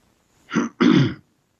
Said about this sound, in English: That was me clearing my throat.